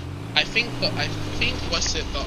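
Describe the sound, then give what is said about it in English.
A video game car's engine drones steadily as it drives past during daytime in the game, its low hum holding level throughout, with a few brief hissy bursts scattered over the top. “I'm gonna just pass this car.”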